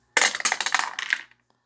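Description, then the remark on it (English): Dice clatter down through a clear acrylic dice tower with smooth faux wood panels in a quick, bright burst of rattling clicks and bounces, lasting about a second before settling with a faint final tick. Fairly loud, no voices. “Got the old dice tower out with the sweet clear acrylic and the smooth faux wood panels.”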